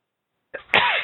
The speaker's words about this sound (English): I sneeze, amateur.